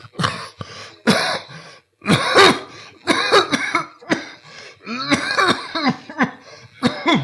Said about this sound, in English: My voice got lost somewhere. Coughing fit.